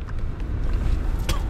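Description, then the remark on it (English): A single sharp, forceful blast of air snorted out through the nose, a brief hissing burst near the end, set against a steady low rumble of background noise. “sorry, another snot rocket.”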